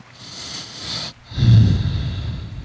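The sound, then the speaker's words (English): Two heavy breaths blown straight into the microphone: a hissy inhale, a brief pause, then a louder, rumbling exhale with a snorting, breathy roughness. No talking. “This nigga came breathing on the track today.”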